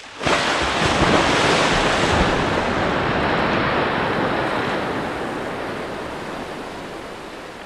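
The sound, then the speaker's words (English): Heavy sea surf roars and crashes against rocks below cliffs in a dense, continuous wash of noise, loud at first, then easing slightly as it churns on with no voices. “And again, the cannons missed their target, their shots crashing into the rocks behind, causing yet more chunks to break free from the cliffs and churn up the sea below, directly to the port side of the Norse vessel.”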